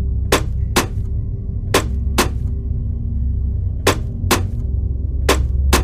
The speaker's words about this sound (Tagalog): Maya-maya ay may narinig siyang kumakatok sa kanilang pinto.